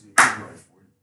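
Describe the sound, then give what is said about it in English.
A single sharp hand clap, loud and bright, with a quick attack that fades over about half a second. Nothing else is heard around it. “Okay. Clap.”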